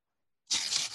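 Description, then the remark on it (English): After a moment of silence, someone voices a harsh, hissy ripping sound with their mouth, a loud burst imitating paper being torn that lasts about half a second. “That was me pretending to rip paper without ripping paper.”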